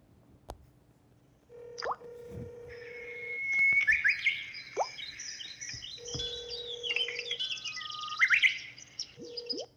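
A telephone ringback tone as a call is placed to bring a guest onto the show Real Candy, repeating as long, steady mid-pitched beeps about two seconds each, separated by pauses, while lively bird chirps and trills carry on above it. No one speaks.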